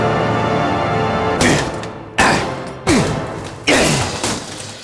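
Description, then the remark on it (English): Heavy blows land on a door, four or five loud thuds at uneven intervals, each booming and ringing briefly before the next strike. No one speaks. “Maybe they're behind this here door.”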